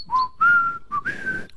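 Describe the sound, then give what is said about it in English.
A person whistles a short tune, a few clear notes sliding up and down in two quick phrases with a brief pause between them, with no talking. “I walk and I whistle, yet wallowing follows.”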